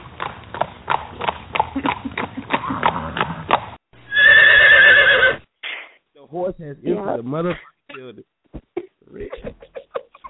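A run of sharp, evenly spaced hoof clops leads into a loud, drawn-out horse whinny, followed by scattered shuffling and knocking sounds, all fairly loud.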